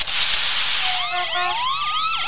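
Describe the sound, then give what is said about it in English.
A police car siren in a police chase video starts up after a rush of noisy traffic, its loud wail quickly rising and falling in repeated sweeps with no one talking. “Wow, the best of the world's wildest police chases.”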